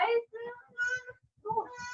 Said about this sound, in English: Oh, excuse me. That's a little toddler.